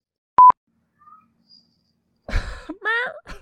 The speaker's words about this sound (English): Speaking of that, my cats are currently wailing outside because I have the door closed, and they're just like, Mother does not love us. Mother keeps us unjustly shut from this chamber.